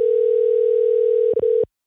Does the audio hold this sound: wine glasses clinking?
no